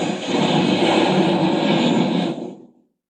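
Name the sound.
airplane engines roaring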